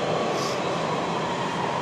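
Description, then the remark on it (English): A Metro Red Line subway train at Union Station rumbles steadily along the track, a dense, continuous roar of wheels and motor noise with a faint brief hiss partway through, loud throughout. “And welcome aboard Metro Redline. The station is Union Station.”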